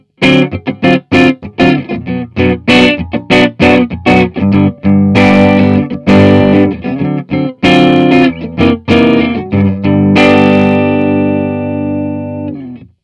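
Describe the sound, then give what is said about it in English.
A distorted electric guitar plays choppy, tightly muted chords and single hits with a dry signal, then ends on a sustained chord that rings out with a small amount of hall reverb. No voices. “So we'll give you an idea of a dry signal again really quickly, just to give you a little tone palette cleanser, if you will.”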